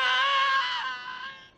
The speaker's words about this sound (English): I played the scream from Commando when Arnold Schwarzenegger drops Sully off the cliff. Yeah, yeah. Which is what I want to be the new Wilhelm scream. No, it should be. It's an amazing scream, and I want to start hearing this in movies all the time.